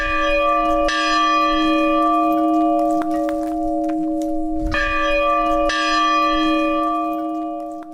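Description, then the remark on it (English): A large, heavy bell from an old beachside mansion, now kept at a museum, rings out several times, each strike blooming into a long, resonant hum that overlaps the next. It is loud, with no voices. “Its bell wound up here at the museum.”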